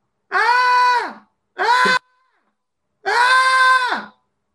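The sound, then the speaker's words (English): A voice imitates girls yelling as they walk down stairs: three loud, drawn-out, high-pitched shrieks, the middle one short, with brief silences between and no other talking. “you're walking down the stairs casually like a normal human being. Why are you yelling?”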